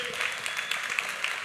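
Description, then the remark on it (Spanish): A crowd applauds steadily during a sermon, a dense wash of many hands clapping at an even, moderate loudness with scattered sharper claps standing out, and no voices over it. “Con mucho respeto le digo, yo no respondo a sus aplausos.”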